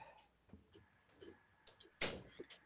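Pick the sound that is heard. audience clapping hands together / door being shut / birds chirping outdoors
door being shut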